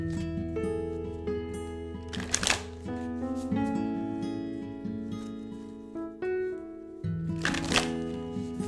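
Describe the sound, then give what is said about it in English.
Tarot cards are shuffled to pull a card, in two brief, crisp riffling bursts a few seconds apart, heard over soft, steady instrumental music with sustained tones. No one speaks. “Wow, beautiful, beautiful shuffles.”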